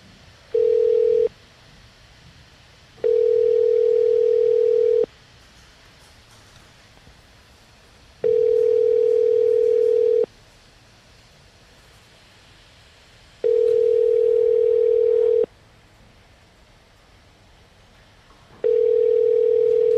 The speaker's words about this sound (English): Let me try to call him. Let me try to get him back on the phone.